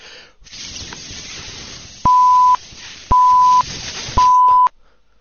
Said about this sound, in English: What's with all the beeping?